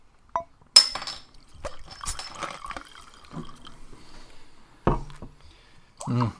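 Glass clinks sharply, followed by wine splashing and trickling into a glass, with a few more clinks and brief handling knocks near the end.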